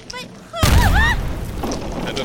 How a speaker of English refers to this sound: What was that? Explosion from above. Someone's trying to tunnel down to us.